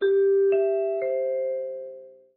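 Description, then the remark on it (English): Three clear bell-like chime notes struck about half a second apart, the classic NBC broadcast chimes, ringing out alone and sustaining into a smooth fading decay, opening the broadcast of Saturday Night's Main Event. “Let's hear those NBC chimes.”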